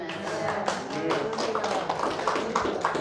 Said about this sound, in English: You guys are clapping.